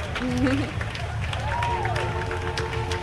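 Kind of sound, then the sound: crowd, parade crowd clapping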